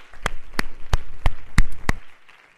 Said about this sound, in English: Clap your hands this morning to the Lord.